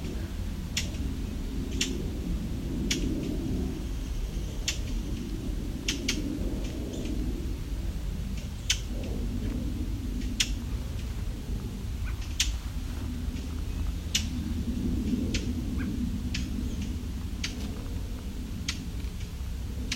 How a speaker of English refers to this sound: But this tick, these seem to be brown thrashers. At least one of them is a young one.